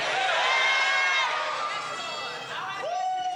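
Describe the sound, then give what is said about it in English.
A large crowd yells responses back at a preacher all at once after a count of three, a loud, dense wash of overlapping voices yelling together that stays steady before thinning slightly near the end. “On the count of three, yell something back at me.”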